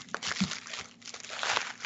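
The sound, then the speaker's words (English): Close, scratchy rustling of paper wrapping rubbing and crinkling right against a microphone, a continuous uneven friction noise with small crackly bursts throughout and no voices. “The paper's rubbing up against the microphone.”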